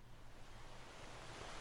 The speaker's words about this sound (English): I hear this gentle sound of the waves going in and out and in and out.